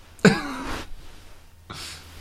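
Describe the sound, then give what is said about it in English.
Two coughs: a harsh, forceful first cough that trails off, then after a short pause a second, breathier one, with no talking around them. “When someone's coughing, it's like, please die quietly.”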